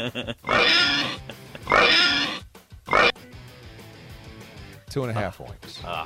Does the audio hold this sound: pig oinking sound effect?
yes